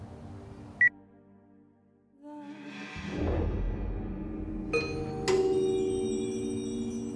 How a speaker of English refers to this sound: So, what do you do when you discover a hidden mansion in the woods? I guess you go ring the doorbell.